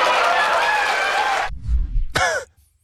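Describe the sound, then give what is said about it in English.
A crowd roars with loud hooting and laughter for about a second and a half, then breaks off into a low rumble and a short rising whoop before going quiet. “To the hoots and laughter of the crowd.”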